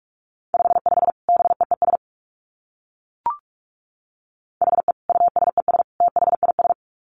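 Rapid Morse code at 45 words per minute sent as a steady mid-pitched beeping tone, keyed in two quick bursts of dits and dahs with a pause and a brief click between them, no voices.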